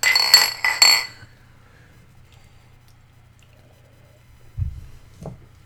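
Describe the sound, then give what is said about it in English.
Two quick, bright clinks of beer glasses knocking together in a toast at the start, ringing briefly before fading into quiet, followed later by a few soft low thuds. “So we're moving on to the second beer. Second beer. Cheers, gentlemen. Cheers.”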